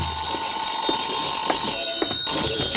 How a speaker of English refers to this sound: I went back to my room, and the phone was ringing.